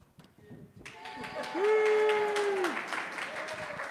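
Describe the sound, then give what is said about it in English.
An audience at a morning gathering of the Washington Ethical Society, a humanistic audience, bursts into steady applause, many hands clapping at once, with voices cheering and one long, held whoop rising over the clapping before it trails off. “It's great bringing your own cheering section.”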